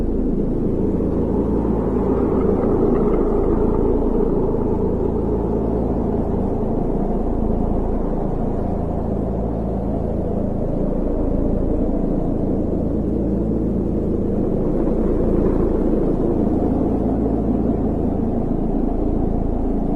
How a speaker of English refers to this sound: It's Mars. This is Mars, but that's not the coolest part. This video is the sounds of Mars. You must hear this. Listen. But nothing added. Hear that low drone?